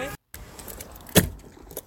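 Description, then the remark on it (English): Keys jangle in short metallic bursts while a car is being packed in Edinburgh after a show, with a sharp clunk near the end and soft rustling and handling noises. “Oh, just packing the car after the Edinburgh show.”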